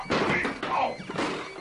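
Someone trips over a huge potted plant, producing a jumble of thumps and a crashing clatter in three quick loud bursts, with scraping and rustling in between and no talking.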